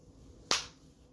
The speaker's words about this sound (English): That was one clap, by the way. That's all I can give Cody. After all he's done to me and the world at large, all I can give him is one clap for that just ounce of a presence, clarity, mental clarity on this whole situation.